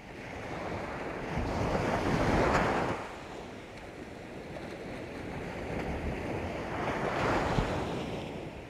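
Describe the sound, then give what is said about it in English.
Gentle ocean waves wash in and recede in slow surges, with a soft, steady breeze rustling across the microphone. No voices, just continuous shoreline surf at moderate volume. “That steady horizon and the gentle breeze and the lapping of the waves.”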